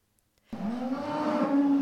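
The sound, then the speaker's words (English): After a half-second of silence, a single cow at Hillcrest Dairy, a farm of about 8,000 cows in La Grande, Merced County, lets out a long, loud, drawn-out moo on a windy day, its low tone rising and holding steady to the end. “It's a windy day in La Grande as Eddie Hoekstra drives through rows of cattle on his farm.”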